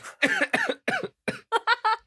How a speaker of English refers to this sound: Not the coughing. I'm sorry. I thought I was going to laugh. And then I couldn't mute myself.